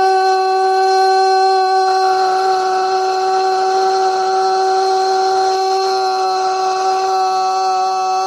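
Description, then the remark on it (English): A breaking news siren sound effect: a loud, steady, buzzy alarm tone with rich harmonics, held at one pitch for about eight seconds with no voices. “That's the breaking news siren.”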